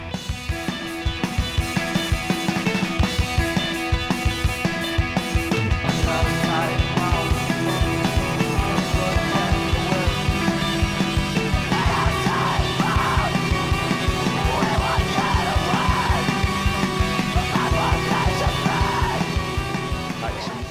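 A loud, dense screamo track: a raw screamed vocal rides over distorted guitar riffing and pounding drums, the wall of sound staying intense and steady throughout.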